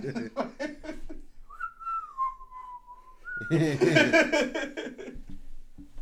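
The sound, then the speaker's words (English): Someone whistles a short, jaunty tune, the Robin Hood whistle, for about two seconds, clear. Voices chatter just before it, and loud laughter and excited talk break out right after. “The fucking Robin Hood whistle comes playing in the background, you're over there bending her over.”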